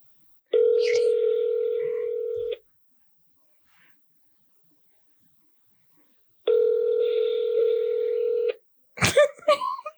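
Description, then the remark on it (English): An outgoing phone call rings: two steady, buzzy ringback tones, each about two seconds long, separated by a pause of silence, then a quick clatter like the line being picked up. “It's fucking ringing.”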